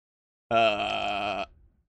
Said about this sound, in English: Burp. Excuse me.